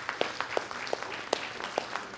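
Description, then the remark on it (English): An audience applauding students: a dense, steady wash of many hands clapping, with a few sharper, louder individual claps popping out every half second or so. No one speaks. “I just started this clap because I didn't want you to fall asleep.”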